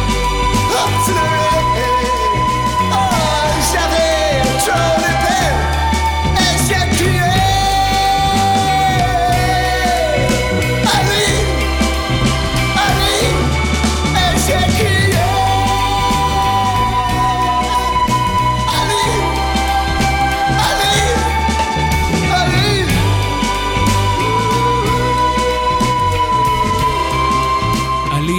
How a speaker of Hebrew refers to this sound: וגם השיר הזה הוא לקוח מפסקול של סרט מוזיקלי חדש של וס אנדרסון, הכרוניקה הצרפתית.